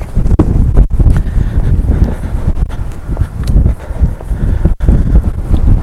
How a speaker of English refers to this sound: I bet this wind is horrible to listen to. Well, worth a shot, it's not raining.